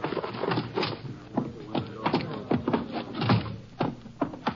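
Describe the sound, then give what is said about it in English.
A door is opened and then shut as men carry a man in, with a series of sharp knocks, creaks and thumps spread over a few seconds against a busy, rustling background. “I'll get the door for you.”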